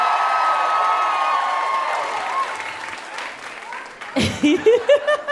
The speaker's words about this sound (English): Give it up for him one more time, everybody.